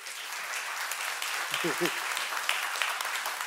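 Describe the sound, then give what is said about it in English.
A crowd applauds team members who were called up to help, a dense wash of clapping that holds at an even level throughout, with a short voiced cheer rising briefly from the audience partway through. “we'll give them a little round of applause, because they had no idea I was gonna do this.”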